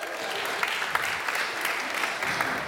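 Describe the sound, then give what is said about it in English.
People clapping and whooping to celebrate moms on Mother's Day: dense, steady applause that holds at an even loudness for a few seconds, bright, with no clear speech. “Yeah, some of you want to clap and give a whoop whoop.”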